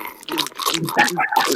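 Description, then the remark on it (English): Loud, noisy eating by a man: wet crunching and chewing in quick, irregular bursts, with smacking bites repeating throughout the short stretch. “God, he eats like a pig. I don't know. Pigs tend to chew.”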